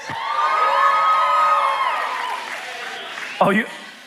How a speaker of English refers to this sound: You're cheering? I didn't know you were cheering.